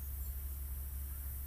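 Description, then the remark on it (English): A faint, steady high-pitched drone of crickets and grasshoppers chirping at 5:11 p.m. on a late-summer Sunday runs continuously over a low, constant rumble, with no talking. “And you probably can hear the birds. Maybe some children in the distance. Some crickets. Grasshoppers. The sounds of late summer.”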